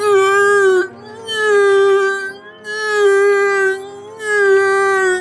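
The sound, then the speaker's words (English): A voice imitates a crying horse with four loud, sustained wailing calls, each a steady mid-pitched tone rich in harmonics, separated by brief pauses. “Was that your attempt at a horse? It's the crying of a horse.”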